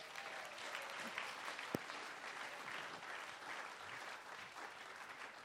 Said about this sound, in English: Give them both a round of applause.